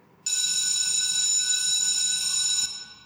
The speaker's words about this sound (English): He sat quietly in the classroom while others around him chatted loudly, all waiting for the bell to ring to signal the beginning of the class.